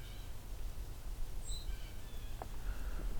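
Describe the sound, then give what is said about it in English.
A few faint, high-pitched peeps from white-throated sparrows, short and scattered, over a steady low outdoor rumble. “Something peeping here. I think that's white-throated sparrows.”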